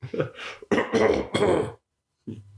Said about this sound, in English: Coughs.